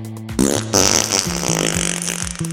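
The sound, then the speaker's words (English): A long, loud fart sound effect, sputtering and rumbling with wet, buzzy pulses for a couple of seconds, prominent with no talking over it. “And oh yeah, one more thing, I have a bit of gas.”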